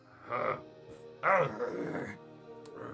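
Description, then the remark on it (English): A man's voice imitates a dog's growl, producing two rough, guttural bursts, the second louder and longer, with no spoken words. “They just growl. And … is like...”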